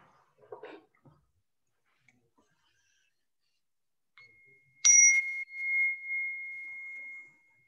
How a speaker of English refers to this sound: Once again, you're going to hear the sound of the bell, then I will recite the five remembrances.